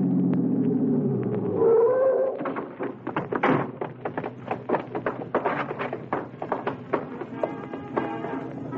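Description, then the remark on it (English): A car engine rumbles and rises briefly as the vehicle is twisted into an alley leading to a theater's stage door at about 1:25, followed by a scatter of clunks and taps as a door shuts. No one speaks. “It was maybe 1:25 when I hit the alley leading to the stage door of the Dodge Theater and twisted the car into it.”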